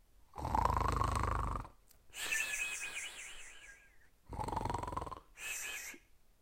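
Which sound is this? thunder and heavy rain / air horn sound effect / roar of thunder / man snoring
man snoring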